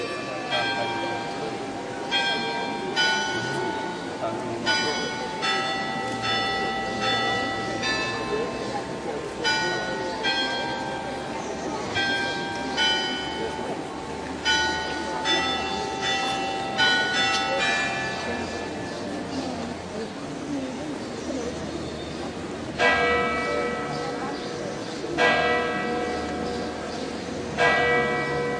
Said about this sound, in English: The chiming bells of the Basilica in Lourdes.